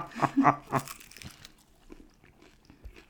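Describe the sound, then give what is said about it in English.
Crunchy chewing while eating: three loud, crisp crunches in quick succession at the start, then softer, irregular munching that fades into quiet chewing. “And if you don't like chewing sounds, I'm so sorry.”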